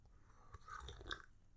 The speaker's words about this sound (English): Okay, I'm going to take a sip of coffee because this has been a lot of reading so far.